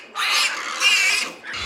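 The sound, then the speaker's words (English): Pigs squealing shrilly at a pig farm, young pigs fighting a bit as they come to suckle, in three loud, overlapping bursts, high-pitched and harsh with a strained, wavering tone, and no voices. “Well, they sent me to a pig farm.”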